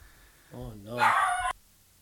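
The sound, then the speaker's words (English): A single drawn-out vocalization from a female dog, starting as a low whine and rising into a sharper, brighter bark-like yelp, moderately loud, lasting about a second before cutting off. “I don't know what she's barking at.”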